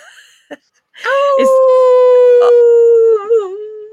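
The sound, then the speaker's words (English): A person imitates a wolf, letting out one long, loud, steady howl that holds a single pitch for a few seconds before wavering and dipping at the end, after a brief breath and short noises. “Listeners, your call to action this month is, I want you to howl.”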